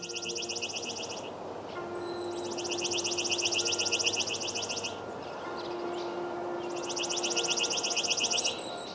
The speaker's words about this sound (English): The song of the chipping sparrow is both easy and difficult to learn. While its simple trill can be heard in most places in North America at some point during the year, it isn't the only species that makes this kind of song.